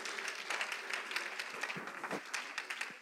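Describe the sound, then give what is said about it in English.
A crowd of people applauds together in appreciation of God during a sermon, a dense, steady wash of many hands clapping that holds at an even level for about three seconds with no voices on top. “Come on, can you clap your hands in appreciation to the only one that can make us new again?”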